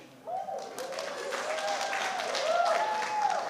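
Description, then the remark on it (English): An audience at a meeting breaks into applause after a speaker's one-minute comment: dense, steady clapping that starts abruptly and holds for several seconds, swelling slightly louder, with a faint voice or murmur mixed in. “Well, people applaud, and then my minute was over”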